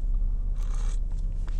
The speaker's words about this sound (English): Coffee slurp.